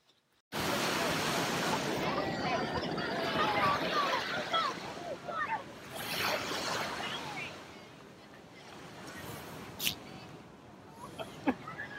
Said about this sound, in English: So we don't actually have a sponsor right now, understandably, but here's a video of a seal farting. So yeah, here you go.